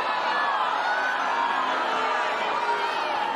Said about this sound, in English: Well, note the reaction of the crowd. Did you detect universal support for this movement? Cheers of, yes, you go. You go, Just Stop Oil. We're right behind you. Or did you hear what I heard? Which is loud, relentless booing